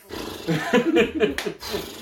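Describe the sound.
A person imitates a horse with a rough, throaty whinny that wavers up and down in pitch, broken by a sharp breathy snort before trailing off.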